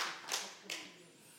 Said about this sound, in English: As we applaud artificial intelligence.